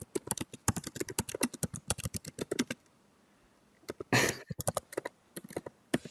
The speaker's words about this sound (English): You don't even mute it, so we just hear you typing it.